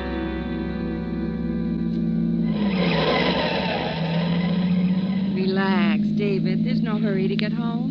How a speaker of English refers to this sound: In this mess of traffic. Must be a wreck or something up ahead.